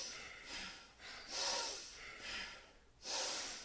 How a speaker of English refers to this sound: Inhale. Exhale. So the breathing sounds very strong. It is strong. Breathe deep through the nose.